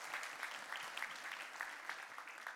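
Steady applause from a crowd fills the whole stretch, many hands clapping at once in a dense, even patter at moderate loudness, with no voices rising above it.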